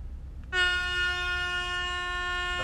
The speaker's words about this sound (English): That's a fog horn. That's so long. It's like a ship horn, dude.